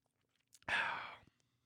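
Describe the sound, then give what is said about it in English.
A single sip of beer, a breathy slurp lasting about half a second, heard on its own against near silence with a faint click just before it. “Let me take a sip of beer and start over.”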